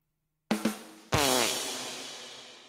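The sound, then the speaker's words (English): A cartoonish fart sound effect: two quick short blasts, then a longer, louder buzzy one that trails off over about a second and a half, with no talking. “Well, if you're interested in Nickelodeon All Star Brawl, you might as well hit the fart noise because that list is shite.”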